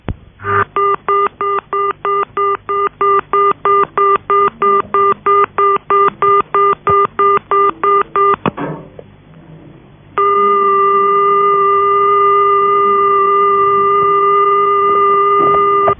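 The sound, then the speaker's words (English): A payphone pay tone sounds as a rapid, evenly spaced series of loud, buzzy pips for about eight seconds, then after a short gap a steady continuous telephone tone takes over. “It is also another modern introduction, came in with the pay on answer box. It is usually 400 Hz, as in this example”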